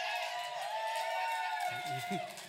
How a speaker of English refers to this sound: Those of you that are clapping right now, you know that this was the place to be on Friday night.